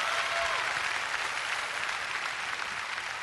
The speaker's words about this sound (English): If you're ready now, give the Lord a clap offering and shout now.